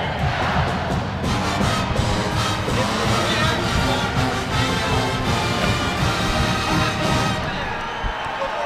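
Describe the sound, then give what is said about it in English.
The Blue Zoo student crowd roars and cheers continuously during a 30-second timeout at a Seton Hall versus Middle Tennessee basketball game, a dense, loud wall of shouting voices that stays steady throughout with scattered whoops and yells rising above. “Hey, the Blue Zoo's going crazy up there.”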